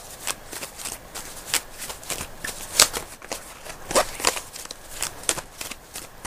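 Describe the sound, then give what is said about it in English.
Tarot cards being shuffled for a reading, a steady run of crisp papery riffles and flicks with brief pauses between bursts, no voices over it. “And please say stop shuffling whenever your heart says stop.”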